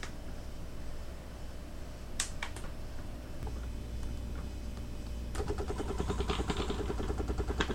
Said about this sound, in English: And there it is. So it's a little bit of trial and error. You can hear it pushing out the steam. So if I roll this across the floor or push this across the floor, this floor is now getting steamed.